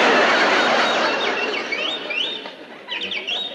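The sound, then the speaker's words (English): A canary named Yasha squawks and chirps in a run of quick, rising high-pitched calls, set against a loud, steady hiss of background noise with no one talking. “I thought I told you to give that canary some Dr. Gruber's bird seed.”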